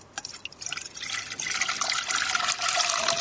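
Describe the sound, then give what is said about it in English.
Salty water is poured into a saucepan that is black on the inside, a continuous splashing stream that builds and rises slightly in pitch as the pan fills to about a centimetre deep, with no talking. “OK, so we'll pour that into the saucepan now.”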